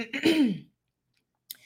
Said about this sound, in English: I apologize if you are listening to this audio and you're hearing me clear my throat. I promise next time I'll have some tea.